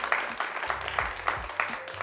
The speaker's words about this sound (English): Actually, I can't stop the clapping, so you have to let it go.